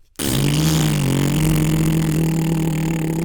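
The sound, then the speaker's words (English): After a moment of silence, the engine of a big stolen forklift catches abruptly and settles into a loud, steady, droning roar, with a slight rise in pitch early on and no voices. “All right, this forklift should do it. It's big enough. All right, here we go. Let's get it on here. Open up the engine.”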